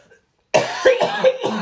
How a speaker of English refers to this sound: Do you need to cough? Go. But I'm trying hard not to cough.